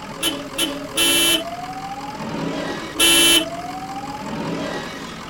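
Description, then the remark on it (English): A beat-up tow truck's horn honks in an odd pattern, two short toots and then two longer blasts, loud, with a rising whine and a low engine rumble between them. “The small hooded creatures stopped and stood back as the driver laid on the weird-sounding horn again.”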